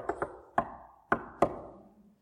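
Five sharp, woody knocks on a door in an uneven pattern, a quick pair, a single rap, then two more, each leaving a short resonant ring. No one speaks.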